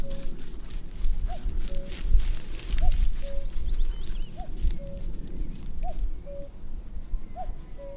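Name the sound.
cuckoo calling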